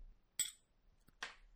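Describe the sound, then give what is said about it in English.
Glasses of Jameson Irish Whiskey clink together in a toast: a bright, ringing chime rings out first, then a faint tap and a duller, rougher knock follow within about a second, with no one talking. “So, if you're drinking along with us, raise your glasses.”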